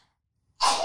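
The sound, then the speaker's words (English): A single sudden sneeze bursts out after a short silence, sharp and breathy with a bright hissing edge, and no talking around it. “I usually sneeze. Like, I just made that cute on purpose.”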